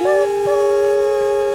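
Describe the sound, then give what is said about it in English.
A steam whistle blows one loud, steady, sustained tone, rich in overtones and holding its pitch throughout, with no voices. “Steam whistle transition.”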